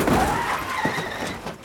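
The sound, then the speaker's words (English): A loud car crash sound effect: a dense burst of crunching impact noise with glass shattering through it, sustained briefly before trailing off, no voices. “But when a car crashes during an action scene, who's actually in the driver's seat?”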